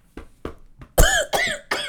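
A woman coughs in a rapid series, three small quiet coughs followed by three loud, harsh hacking coughs, with no talking.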